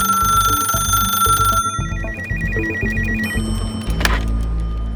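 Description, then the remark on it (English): A telephone at Bell Labs rings with a call from Sony, a bright, repeating electronic warble, its trilling tone pulsing steadily over a loud, rhythmic low background that runs throughout. “It took a year of iterative doping before Bell Labs received a call from Sony.”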